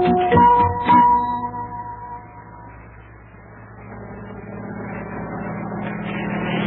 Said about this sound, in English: Well, look at that. Do you see what I see? It's a helicopter. Hey, now, what's that doing way over here over the ocean? It says U.S. Mail on the side. Is that helicopter bringing us mail?